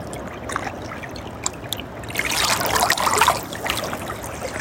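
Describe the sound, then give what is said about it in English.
Water trickles and burbles steadily, with a brighter, splashier surge in the middle before settling back to a gentle flowing babble. No voices. “Feel the playfulness of the water.”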